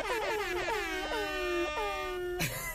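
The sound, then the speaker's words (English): A voice mimics an air horn: loud, blaring, buzzy tones in several quick pulses that stretch into a long held blast, then drop off sharply at the end. “That noise you just made. The air horn. So realistic.”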